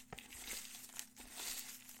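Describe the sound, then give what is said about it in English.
Papery rustling and crinkling as slips of paper are shuffled together by hand for drawing a name, with a steady hiss and small crisp bursts, no talking. “The chaos demon in me wants to let you keep shuffling for a while.”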